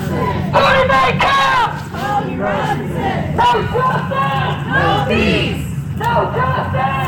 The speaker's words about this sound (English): Then, after the 3-hour celebration of life, cars and marchers left the Wilmar Center to pack the streets of East Madison, chanting and continuing slowly to the house on Williamson Street where Robinson was shot dead in 2015.